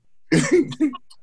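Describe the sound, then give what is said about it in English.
Several harsh, raspy coughs in quick succession, about three bursts, loud, with no talking around them, from a person coughing after smoking weed. “Ain't nothing wrong with a little weed cough.”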